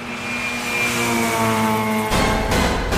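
A monster truck engine revs loudly with a steady, droning growl, then bursts into a harsher, full roar for the final second. There's no talking.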